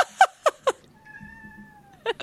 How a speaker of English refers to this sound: Melvin, was that Melvin? Yes. Finally, an actual cat meow.